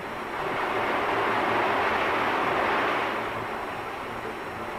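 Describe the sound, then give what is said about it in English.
An Owens vacuum glass bottle-making machine runs, its many arms spinning round and dipping into a revolving furnace pot to draw up molten glass, with a steady, dense mechanical roar over a low rumbling hum, holding loud and even for the whole stretch with no voices. “Here's one of the two basic types, an Owens vacuum machine.”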